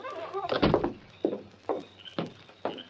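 A heavy door leading to the outside thuds open or shut, followed by four evenly spaced footsteps walking away, with no one speaking.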